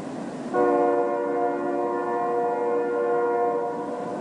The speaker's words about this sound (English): If you've ever put your head down on a railway track, you might have heard a distant train. Now, in that case, the sounds are coming through the steel of the rail.